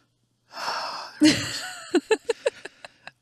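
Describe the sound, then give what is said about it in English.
Heavy breathing into a microphone as caffeine kicks in: a long airy breath, a sharp gasping intake, then a quick run of wheezy huffs that grow fainter, with no talking. “But I think maybe I'm now self-conscious about how hard I'm breathing because the caffeine's kicking in.”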